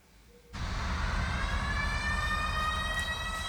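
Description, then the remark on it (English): After a brief quiet start, loud siren-like tones in a techno track swell in, slowly rising in pitch over a dense, heavy electronic bass backdrop, with no one talking. “Oh, the sirens, mate.”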